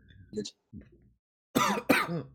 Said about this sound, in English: Well, I cough to death.